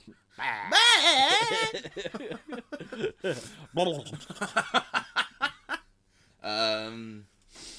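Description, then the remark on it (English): A person imitates a goat with a wavering, nasal bleat, followed by a burst of snickering laughter and another short bleat-like call at the end. “Goats.”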